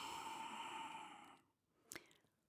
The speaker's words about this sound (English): So like, inhale, and expand your lungs as you inhale. Continue inhaling. You can inhale a little more. And then exhale. And exhale as deep as you can.